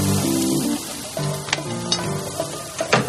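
Burgers and hot dogs sizzle on a grill in the suburbs as a man cooks them, a steady, crackling hiss broken by a few sharp clicks and scrapes, with soft tonal notes running underneath and no talking.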